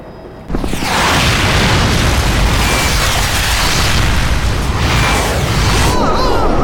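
A missile explosion hits a helicopter, bursting in abruptly after a brief hush and rolling on as a loud, sustained roar of rumbling debris, swelling again toward the end.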